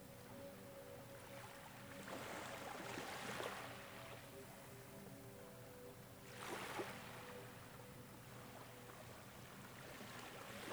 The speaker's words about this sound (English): The only sound in the afternoon sunlight is the sea, a light breeze, and some seagulls.